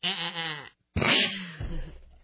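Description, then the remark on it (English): A person's voice imitates a goat, giving a wavering, nasal bleat, followed after a short pause by a harsher, breathy second bleat that trails off. “Wait, what does a goat say?”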